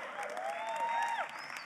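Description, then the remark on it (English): A light, polite golf clap from a small group, a soft steady patter for under two seconds with no voices, while a thin sliding tone drifts faintly over it. “Yeah, golf clap.”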